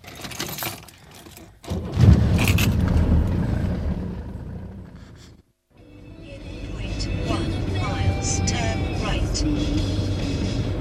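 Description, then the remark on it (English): Steady, loud road rumble from a car driving into Dunstable from the Luton direction, with a lot of oncoming traffic, and a brief drop to near silence midway before the engine and tyre noise resume, joined by faint high chirps. “There's a fair amount of traffic. There's actually a lot of traffic coming the other way.”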